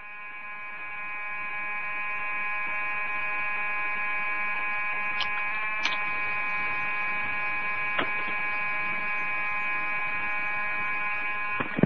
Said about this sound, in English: I pushed it up, but the alarm's still going off.